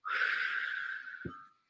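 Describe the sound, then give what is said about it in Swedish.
A single audible breath, drawn steadily in through the nose with a hissy, airy tone for over a second, ending in a brief soft puff as it is breathed out. “Och jag brukar då andas in genom näsan och sen ut.”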